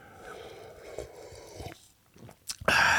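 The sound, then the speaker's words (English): Quiet mouth noises with soft wet clicks, ending in a louder, breathy slurp as someone takes a sip of bitter wine. No one speaks. “I've only had one sip of this fucking bitter wine, too. I'm going to have another sip.”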